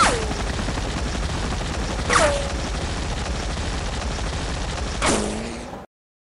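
A dense, continuous roar of rapid gunfire from a helicopter gunship, with three sharp explosive blasts at intervals, each trailed by a falling whine, cutting off abruptly at the end; no voices.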